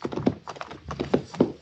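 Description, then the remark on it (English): Horse hooves clip-clop in a steady, uneven rhythm on hard ground as a rider rides up a hillside, moderately loud, with no voices over them. “Carver and the girl sat their horses, staring down the other side as I rode up.”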